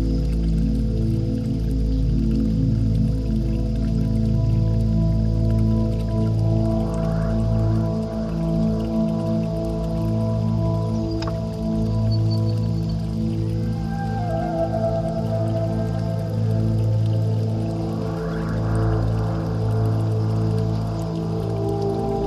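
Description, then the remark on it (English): Dripping water sounds run through an ambient music track, layered over steady droning synth tones with slow rising sweeps, continuous and fairly loud throughout, with no talking. “Sucker for water in any track.”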